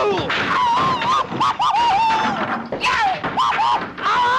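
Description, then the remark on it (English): A cartoon smack from Tom and Jerry followed by a long, loud, pained vocal grunt and groan that wavers and bends up and down in pitch, with a couple of fresh strained cries breaking in. “That first initial smack sounds so surprised, let down, and painful all in one grunt.”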